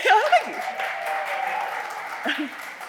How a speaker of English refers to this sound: Didn't expect the clap, but thanks, everyone.